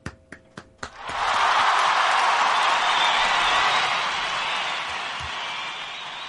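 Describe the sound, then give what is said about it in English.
A few sharp, separate claps open, then a dense burst of applause swells and holds steadily for several seconds, easing only slightly toward the end. “A round of applause, guys.”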